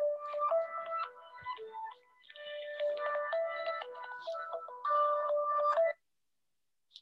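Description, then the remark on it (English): A phone rings with a bright, melodic ringtone for an incoming call, a rapid series of electronic tones playing in a repeating tune for about six seconds, clear, then it stops. “This may be my phone call coming.”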